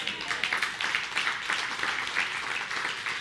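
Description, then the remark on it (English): A crowd applauds steadily, many hands clapping in a dense, continuous patter that holds at an even, moderately loud level throughout with no voices on top. “And if you didn't clap, I'll just assume you meant to, but your hands are broken.”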